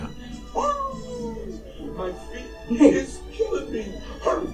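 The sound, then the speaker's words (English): A dachshund holding its leg whimpers in a few thin, high, wavering whines, one long falling cry followed by shorter pained yelps, with a faint murmur of voices behind. “He's in pain. He's holding his leg.”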